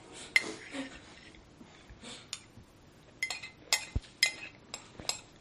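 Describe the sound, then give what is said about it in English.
A foot scratching against a chair makes a string of dry, irregular scraping and ticking noises, some sharper bursts clustered toward the end, fairly quiet with no speech. “It's my foot scratching the chair.”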